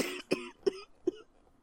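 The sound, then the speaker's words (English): A short burst of harsh, choking coughs from a person, about three sharp hacks in quick succession with throat-clearing rasp between them, fairly loud, with no talking. “I've been trying to subtly clear my throat, but making me choke did help.”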